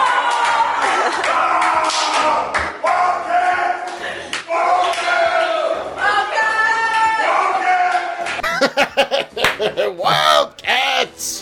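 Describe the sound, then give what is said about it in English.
The LA Wildcats' XFL coach bellows the team battle cry "Wildcats!" It is loud, with long strained shouts that give way to choppy, punchy yells and bursts toward the end. “Is that the official battle cry for the team, …?”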